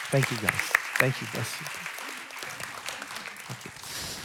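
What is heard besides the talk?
audience applause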